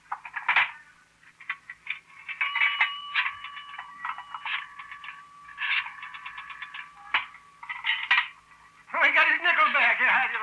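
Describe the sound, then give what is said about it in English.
A nickel drops and clinks into a payphone, then the dial turns with bursts of rapid mechanical clicks and metallic ringing tones, fairly loud; a voice briefly begins at the end. “Now, where's your phone? It's right there. It's a nickel.”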